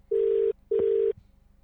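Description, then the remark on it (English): A telephone ringback tone plays through a call line: two steady, buzzy bursts in quick succession, each under half a second, fairly loud and clear with no one talking. “Can you hear this ringing?”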